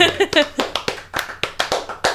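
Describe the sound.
Steady hand clapping for a show's co-host, about nine sharp claps in an even rhythm, sounding like a small group rather than a big crowd, with a brief voice at the very start.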